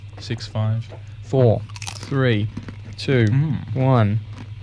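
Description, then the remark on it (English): Crunchy chewing of a salty cracker during a timed taste-guessing game, with brief crisp crackles mixed into muffled, mouth-full voice sounds over a few seconds. Moderately loud. “Well, now I'm done chewing.”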